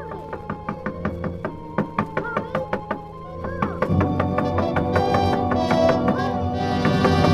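knocking on a door

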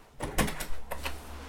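door being closed

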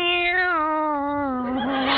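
cat meowing

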